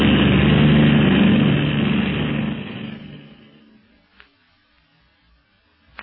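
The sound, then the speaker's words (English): A propeller plane in flight, climbing higher into the air, gives a loud, steady engine drone with strong low harmonics for the first three seconds, then fades away quickly, leaving near silence broken by a couple of faint clicks. “They are not landing. Instead, they are climbing higher into the air.”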